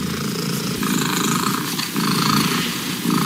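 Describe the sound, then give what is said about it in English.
A British family's 14-year-old domestic cat purrs loudly and steadily during an official loudest-purr record attempt, measured at 54.6 decibels, a continuous rumbling drone with a faint rhythmic pulse and no talking over it. “This is an official attempt for the loudest purr by a domestic cat.”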